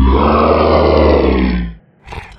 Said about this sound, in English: At that moment, there was a great cacophonous roar of animal wailing that sounded so unnatural